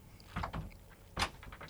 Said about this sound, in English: The door has closed. That means recording is on.